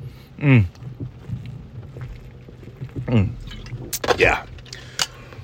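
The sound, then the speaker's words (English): Someone takes a drink: liquid sloshes and pours between a few gulping swallows, with breathy, satisfied vocal sighs in between and no spoken words. “I gotta take a drink.”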